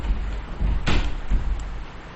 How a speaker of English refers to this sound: Do you mind closing the door, rather? Even for an Englishman, it's chilly.